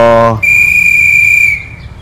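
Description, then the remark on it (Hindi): A garbage collector's whistle: a brief low tone, then one long, steady, shrill blast held at a single high pitch for over a second before cutting off. No talking is heard. “आयलो आयलो गो कचरोवालो आयलो.”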